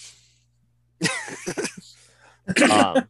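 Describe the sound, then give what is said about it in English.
A man clears his throat with a couple of raspy, gravelly hacks, pauses briefly, then gives one more forceful throat-clearing burst. Faint steady hum underneath. “let me just clear my throat before I get into my Week in Geek”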